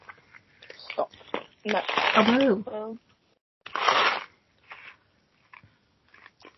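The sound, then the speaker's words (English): Crunchy chewing of Smarties candy in uneven bursts, with a couple of longer grinding crunches and quieter crackly bites between them, nothing else audible. “if I chew my Smarties, can you hear me?”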